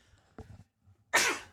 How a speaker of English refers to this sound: Bless you. Excuse me. I had to give a sneeze there.